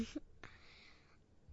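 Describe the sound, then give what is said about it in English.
A cat sneezes twice in quick succession: a brief, breathy burst followed by a sharper hiss that trails off. Both sneezes are soft, with quiet background otherwise. “Right now the cats are sneezing.”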